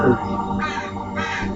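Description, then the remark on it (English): A bird gives two harsh, raspy calls in quick succession, fairly loud, over a steady low background rumble. “I guess they're right, because that damn bird ain't making it.”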